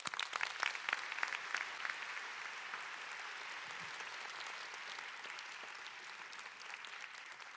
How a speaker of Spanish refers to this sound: Bueno, le damos un fuerte aplauso nuevamente al Pastor